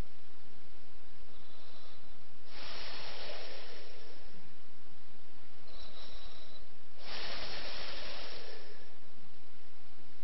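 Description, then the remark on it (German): A voice imitates the snake-like hissing snores of a drowsy yogi nodding off in meditation: two long, breathy hisses about four seconds apart, fairly loud, with soft inhaling in between and no talking. “Wie eine Schlange, hissende Geräusche.”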